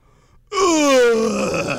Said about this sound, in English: Oh. It was supposed to be a yawn, because I said, wake me up when they're done talking about stupid shit I don't care about.